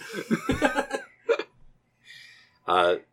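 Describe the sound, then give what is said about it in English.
A short, loud, rough belch near the end, following a few seconds of voiced vocal sounds, with a brief pause before it. “Ixie burps loudly, and the moose turns and says, oh, thank you for your hospitality.”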